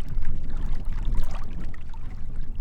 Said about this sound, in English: It's a cool, windy day in the foothills. Ripples and waves are blowing across the little reservoir outside of Superior's water treatment plant.